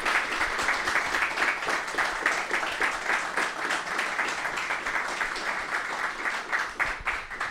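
An audience applauds, many hands clapping in a dense, steady patter that holds at an even, fairly loud level from start to finish without a break or any voices over it.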